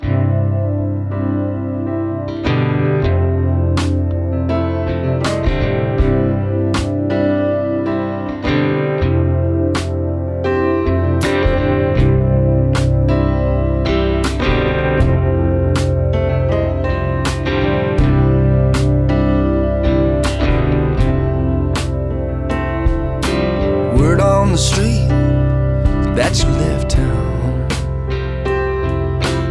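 A folk song from a new album plays on Folk Roots Radio without vocals: steady, sustained low bass and layered chords under regular percussive beats, holding an even, fairly loud level throughout.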